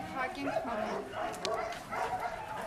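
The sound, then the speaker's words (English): Several rescued dogs at a rescue shelter bark and yip continuously in a busy chorus, moderately loud, with overlapping bursts filling the whole stretch and a few higher whines mixed in. “All the dogs you see here or were shot, were broken, or were hit by a car or something like that.”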